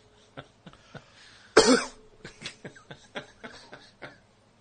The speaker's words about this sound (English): Got a cough? Yeah.